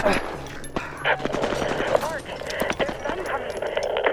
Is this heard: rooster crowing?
no